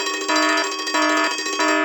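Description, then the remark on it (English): A loud electronic alarm rings continuously, its bright, buzzy tone pulsing in a steady rapid rhythm with no voices present. “Minutia alarm.”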